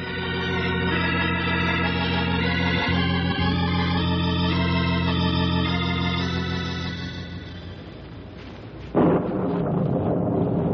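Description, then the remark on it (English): A long, heavy rumble of thunder from an approaching storm rolls steadily for several seconds, fades slightly, then a sharp loud crack breaks in near the end. No one speaks. “Storm's about on us.”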